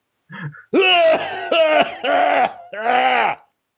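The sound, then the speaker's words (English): A person lets out a run of about four loud, harsh, strained coughing bursts, throaty and groan-like, with brief pauses between them and no talking. “Oh my, that sounds like a bad cough.”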